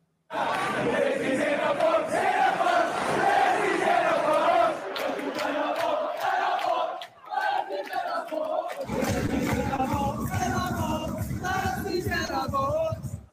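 A large sports crowd at a sporting event in the aftermath of the Queen's death sings a chant together in loud, sustained unison, voices swelling with a steady melodic rhythm and a brief dip before the singing surges back with heavier low rumble.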